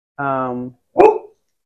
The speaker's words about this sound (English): Sorry for a dog. The list can, because we are inside, because you're probably gonna hear a little bit barking.